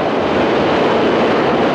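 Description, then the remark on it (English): A loud, steady roar and rumble of a subway train passing below a street grating, continuous for the whole moment, with no voices. “Ooh, do you feel the breeze from the subway?”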